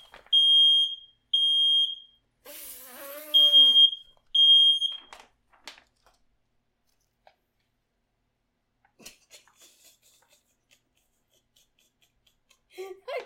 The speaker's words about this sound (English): Is that in here? Yeah, what happened? It's a smoke alarm. It's right there. All I'm doing is vaping.